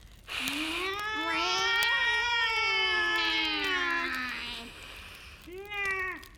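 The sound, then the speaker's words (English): A long, wavering, loud yowl from two huge black cats in a corner stretches for several seconds, followed by a shorter, sharp yowl after a brief pause, with no talking. “As he was blown up a blaze to warm his bones, he heard a shriek from the corner.”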